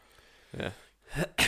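A person coughs in three harsh, rough bursts: a softer first hack, then two louder ones in quick succession, with no talking.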